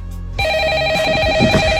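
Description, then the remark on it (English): A telephone rings with a steady, high electronic trill that cuts in abruptly after a moment of low rumble, loud, with no one speaking. “Today is hashtag national answer the phone like Buddy the Elf Day.”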